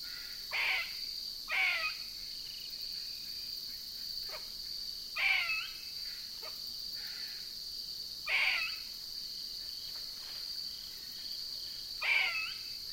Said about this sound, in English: Those are made by gray squirrels. I wonder if I can get close to one. The squirrel is right above me, perched on a limb in a hickory tree. He's flicking his tail excitedly as he calls.